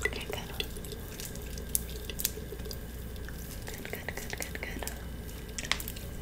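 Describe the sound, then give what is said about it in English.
A salon wash basin tap runs steadily, a soft continuous hiss of water broken by scattered sharp drips and splashes, with no voices, while a stylist works product through the ends of a client's hair with water. “How's the water? Is it good still?”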